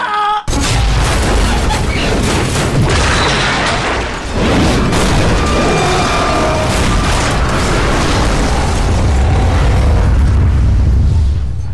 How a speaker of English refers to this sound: Ladies and gentlemen, could you please move from Henman Hill? There's been a dreadful explosion.